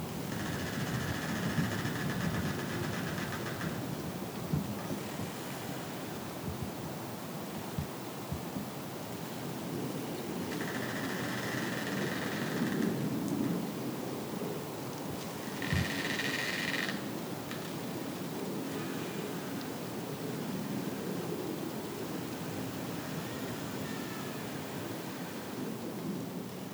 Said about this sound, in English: That was, as far as I could tell, the creaking of trees, recorded at Red River Gorge, mid-December 2022.